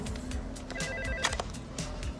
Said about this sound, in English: So anyway, they get a call on his car phone.